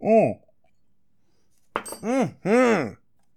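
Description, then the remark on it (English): A short voiced sound, then after a pause a quick glass clink followed by a couple of drawn-out, satisfied vocal exhalations as whiskey is drunk, fairly loud. “over there in the booth has held up the drink more whiskey sign. Cheers, ladies and germs.”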